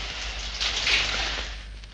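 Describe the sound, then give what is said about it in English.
Cold shower water runs in a shower cubicle, a steady, bright hiss of spray that swells a little in the middle and then settles, with no voices present. “Stayed under the shower for at least 5 minutes.”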